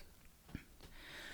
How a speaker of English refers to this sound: I also had to clear my throat, as everyone heard. I just cleared it.